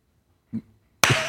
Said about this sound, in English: Oh, well, I was just clapping because I was hyped.